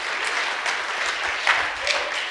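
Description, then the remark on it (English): A crowd applauds steadily as a clap given to God, a dense wash of many hands clapping at an even loudness with a few sharper claps standing out, and no voices above it. “Come on, give a clap to God.”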